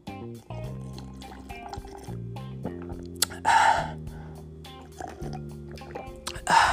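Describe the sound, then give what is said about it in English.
Sipping of water, two short slurping bursts a few seconds apart, heard over a steady low tonal background. “Let me sip on some of this water.”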